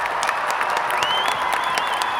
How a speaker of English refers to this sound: can you give us a round of applause there?